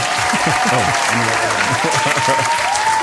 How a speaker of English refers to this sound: I'm going to give it to Simon Pegg. Sweet. Cue applause. Troy, add that in post.